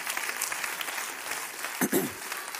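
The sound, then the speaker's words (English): A church audience claps their hands in a steady, dense wash of applause to welcome a family, with a brief voice rising over the clapping near the end. “But give them another hand clap.”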